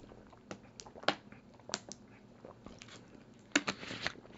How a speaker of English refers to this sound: had to get a sip of water. Sorry about that.